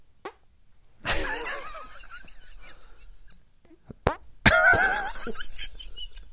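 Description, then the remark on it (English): Two wet, sputtering fart noises made with the hands, each a rough burst with a squeaky, buzzing tail, separated by a short pause and a sharp click. “I can do fart sounds.”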